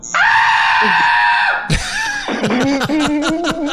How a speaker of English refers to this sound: A scream that loud can only be silenced by a gag ball.